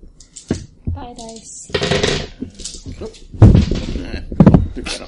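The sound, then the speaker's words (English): Dice clatter and tumble across a tabletop in several short, loud bursts of knocking and rattling, rolled for shots in a tabletop game, with voices talking intermittently in between. “So wait, this one kind of rolled over.”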